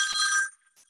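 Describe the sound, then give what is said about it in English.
A mobile phone rings with a bright, bell-like electronic tone that sounds for about half a second, fades, and then gives one faint, brief chirp before going quiet. “Oh, excuse me. I turned my phone off.”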